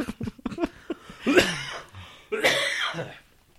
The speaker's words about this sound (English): Fucking all this laughing is making me fucking cough.